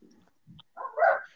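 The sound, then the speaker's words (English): A dog gives a single loud bark after a few soft, low grumbling noises, with no talking around it. “My dogs.”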